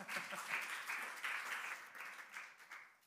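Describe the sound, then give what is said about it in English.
A crowd gives another round of applause for the patient during Eastertide, with dense, steady clapping that holds at a fairly even level for a few seconds before easing slightly toward the end. “Let's give the patient another round of applause.”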